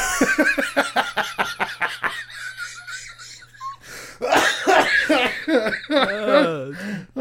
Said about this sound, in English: Oh, fuck, I coughed so hard. That one made me need to pee. I got lightheaded.